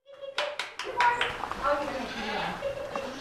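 Several goats on a goat ranch bleat in overlapping, wavering cries, moderately loud, with a few sharp knocks near the start and a continuous bleating chorus filling the rest.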